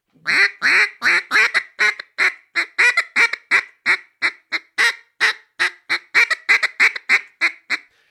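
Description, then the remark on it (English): A long, rapid run of short, raspy hen duck gack notes blown on a duck call, roughly three per second in a steady, choppy rhythm, loud with no talking. “A lot of guys in the timber do it on those Mondo or cut down calls. Gack, gack.”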